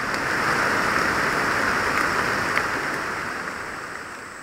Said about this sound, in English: Yeah, I mean, this kind of rain it's like a godsend, because most of the time I spend doing field work is sweating. So when the rain comes in, it's nice and windy and cool. And yeah, it's like music to my ears.